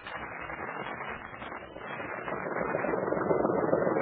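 A patrol boat motor runs steadily with a dense, rattling drone that grows slightly louder and rougher toward the end, continuous with no voices.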